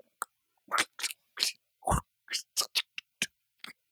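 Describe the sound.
A man's voice imitates a house's front door being unlocked from the inside, while he dances, with a rapid series of about a dozen sharp clicks and scrapes, uneven in rhythm, some crisp and high, a couple heavier and lower, with no words.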